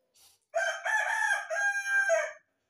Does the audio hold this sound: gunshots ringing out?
no